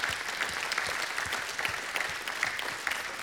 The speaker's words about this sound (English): Hey, let's give God a great hand clap of praise.